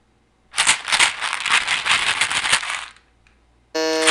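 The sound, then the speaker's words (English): A small plastic box of Tic Tacs is shaken rapidly for a couple of seconds, a dense, bright rattle of tiny candies, followed by a short electronic buzzer tone. “It's a thing of Tic Tacs.”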